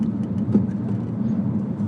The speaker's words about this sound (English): This riding in this car is a core workout. It really kind of is.